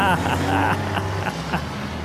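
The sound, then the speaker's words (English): A semi truck engine in a logging town rumbles and revs with a deep, steady drone and rough overtones, holding loud and continuous for about two seconds with a few brief surges. “Yeah, she's revving his engine.”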